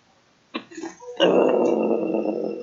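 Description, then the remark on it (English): A beast snarls and growls wetly as a door is opened, a couple of short rough grunts followed by a long, loud, sustained rumbling snarl, sounding like a bear feasting on a kill. “As you open the door, there is a snarling noise that sounds like a bear feasting on a kill.”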